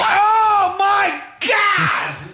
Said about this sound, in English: That, you heard that, the clap. That slap was the punch. I think that was her jaw connecting to her fucking forehead.